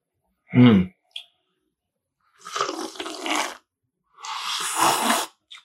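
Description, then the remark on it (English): Two long, breathy sniffs of the aroma of Mexican coffee before the first sip, each about a second of hissy inhalation, separated by a short pause and preceded by a brief throaty snort. “Get some wet sniffs real quick.”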